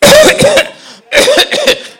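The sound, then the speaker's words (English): A voice imitates a harsh smoker's cough in two loud bursts, each a rapid cluster of rough hacking coughs separated by a short pause. “Sometimes you see people who are smoking, and I see them in front of the buildings in the cold, and they are coughing.”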